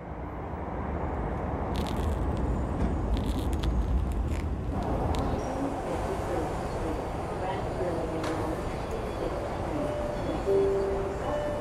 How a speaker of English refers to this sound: This is Jackson Square. The destination of this train. Next stop, Roxbury Crossing. Doors will open on the left.